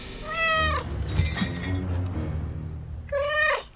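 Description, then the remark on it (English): A cat lets out two drawn-out, falling meows, one at the start and one near the end, with a low rumbling growl filling the gap between them. “Growl, Tiger. Keep him here. Meow.”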